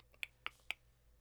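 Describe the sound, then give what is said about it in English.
Three crisp mouth clicks in quick, even succession, sharp, each a short tongue-pop made by a speaker to stand for a nod, with nothing else around them but faint background hiss. “That was a nod. A clicking nod sound.”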